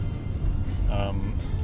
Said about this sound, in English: 25 has still been my max speed. I am, you know, in the stop and go flow of the 405 South. Really hasn't been terrible. It's certainly been much worse.